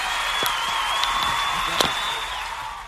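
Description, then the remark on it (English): A cheering sound effect: a steady, hissy wash of crowd noise lasting about three seconds, with a few sharp claps or clicks poking through the roar. “Hopefully if you're listening to this, you'll hear cheer.”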